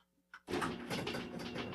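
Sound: door being opened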